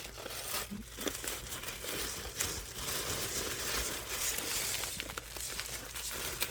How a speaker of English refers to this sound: Sorry, I'm chewing directly in the mic.